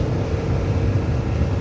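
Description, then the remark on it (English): A loud engine drone from a passing Yamaha off-road motorbike, a steady low rumble with a gritty buzz that holds for under two seconds as it goes by. No voices. “Oh, there's another motorbike. Nice. It was, I believe, also a Yamaha. But then more off-road type of bike.”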